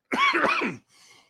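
A loud, raspy cough, a single harsh hacking burst with a rough voiced edge, followed by a softer breathy rasp that fades out. No one speaks.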